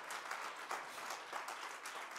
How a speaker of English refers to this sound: Some ought to clap your hands unto the Lord. Hallelujah. Amen.